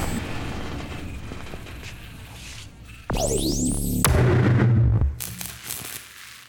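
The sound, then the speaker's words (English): A loud explosive blast erupts suddenly after a stretch of low rumbling noise, its heavy roar laced with whistling, sweeping tones for about two seconds before cutting off and fading. “That blast should have brought you crashing to the ground faster than this city.”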